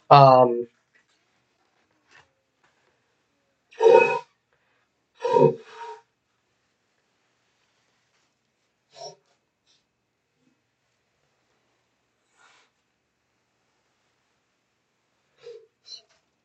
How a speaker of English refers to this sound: Sorry, folks. I had to blow my nose on here. I don't usually do that. I usually wait, but I think it's bad radio to keep hearing me sniffle. My allergies, the pollen in the air right now is horrible.